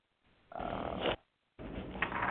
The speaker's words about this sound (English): But something you may not hear very much about is snoring. You know, it's more than just you being forced to sleep on the sofa.